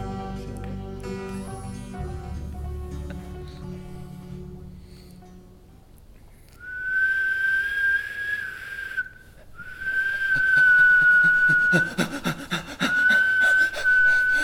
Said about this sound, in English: you whistled for me?